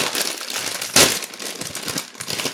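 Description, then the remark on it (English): Crinkling of a popcorn snack bag being opened, a steady crackly rustle of plastic with a sharper, louder rip-like burst about a second in, then continued busy crinkling with no talking. “So let's open her up.”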